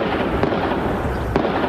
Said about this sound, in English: You can hear gunfire coming from the downtown Louisville branch of the Old National Bank, just across the street from the Louisville Slugger Stadium. He had a long assault rifle and shot to start firing.